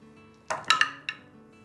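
Four quick, sharp clattering clicks as two six-sided dice are rolled on a table for an investigation check in a tabletop role-playing game. The hard dice tumble and knock, bright and fairly loud, and no one speaks.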